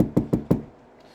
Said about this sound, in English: A tap on the window.